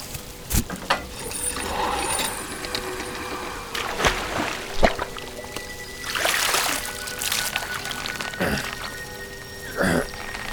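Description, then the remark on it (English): Water pours and trickles in uneven bursts, mixed with clanking, ratcheting mechanical noises, as if from a hand pump; a few soft vocal sounds appear but no clear speech. “First, the water.”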